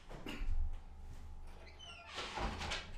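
A door is pushed shut to keep a child from coming in: a low thump and rattle, a brief squeak of the hinge, then a final scraping clunk as it settles closed.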